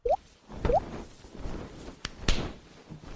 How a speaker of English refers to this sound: Oh, he spilled his water.